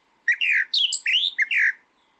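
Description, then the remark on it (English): A bird's call, softer and less intense than its song: a quick run of five or six bright, slurred chirping notes in close succession, fairly clear, with no voices or other sounds around it. “See, it's a difference between its call and a song. As you can hear, it's not as loud and intense as the other one, the spotted ground thrush.”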